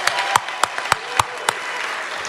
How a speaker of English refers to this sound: So let's give them all a big round of applause.